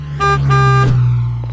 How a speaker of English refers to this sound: Ooh, I love loud noises. Oh, especially car horns. Really puts me at ease.